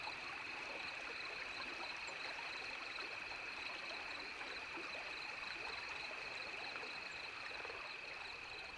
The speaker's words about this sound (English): The wind dies down and crickets begin calling at dusk. Finally, a calm night in which to go exploring. I'm impressed by the diverse springtime cricket choruses. In the Northeast, we don't hear such things until late summer.